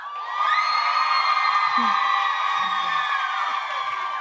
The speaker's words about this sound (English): Please cheer.